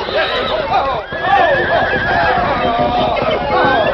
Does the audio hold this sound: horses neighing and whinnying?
yes